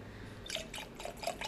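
Liquid pours into a glass with a bubbly, gurgling splash, broken into uneven bursts and dotted with short, bright pitched blips. The sound is fairly quiet, with no voices.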